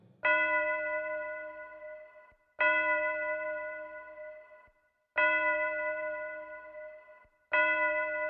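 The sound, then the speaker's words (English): A clock bell tolls the hour, four resonant strikes spaced evenly about two and a half seconds apart, each ringing out loudly and fading slowly before the next, with no voices. “Scrooge slipped into the silence of a dreamless sleep before the clocks began to chime the hour”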